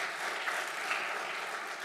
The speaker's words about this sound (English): Would you praise the Lord for Jesus Christ with a hand clap? Would you do that? Thank you so much.